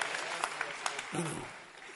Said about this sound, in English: Clap your hands for our lady pastor.